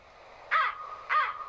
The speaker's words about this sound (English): American Crow Call.